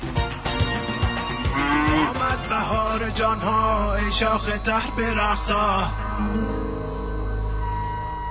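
Loud, drawn-out cow moos overlap one after another for about six seconds, then trail off into a low, quieter rumble with no talking.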